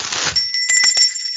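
A small bell, bought cheaply on Amazon and just unboxed, rings with a bright, sustained high tone, struck a few times in quick succession, fairly loud, with no talking.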